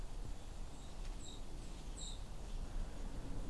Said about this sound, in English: Most of those seep sounds are white-throated sparrows.